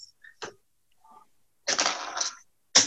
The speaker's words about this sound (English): Well, I dropped pencil.